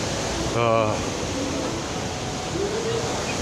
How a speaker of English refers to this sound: There are waterfalls. One of my favorite things in the world is the sound of water doing any, making any kind of sound.